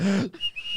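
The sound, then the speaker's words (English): A brief, steady high-pitched whistle, thin and sustained for a fraction of a second, comes after a short low humming tone, with no talking. “A little whistle.”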